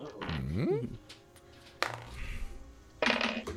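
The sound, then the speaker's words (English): A die rolled for a perception check clatters onto a hard tabletop with a couple of sharp knocks spaced apart, landing on 17 before a cat's tail knocks it over, following a brief murmured voice at the start. “This landed on a 17 and then the cat's tail knocked it over.”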